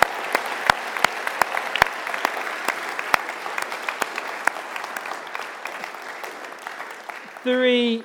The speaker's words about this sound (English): Should we just give another big round of applause to all the kids that have been involved?